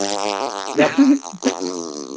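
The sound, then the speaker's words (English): A person blows a wet, buzzing raspberry with their lips, imitating a movie's poor Foley sound effect of a door opening, with a sputtering pitch that wavers and rises in a couple of bursts over about two seconds. “Yeah, it's like, I swear to God, it was somebody blowing a fucking raspberry.”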